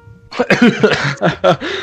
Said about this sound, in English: So right now, I've fully recovered. Starts coughing.